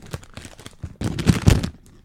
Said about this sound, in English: These are good, man. You guys hear that? A little crinkly.